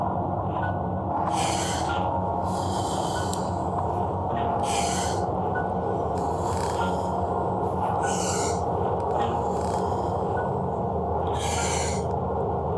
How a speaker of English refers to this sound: That's Wim Hof. He's doing his breathing technique right there.